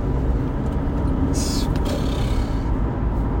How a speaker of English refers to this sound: Yeah, we've been to boxing this morning and we're recording this in the car where we've just watched Big Drew lose.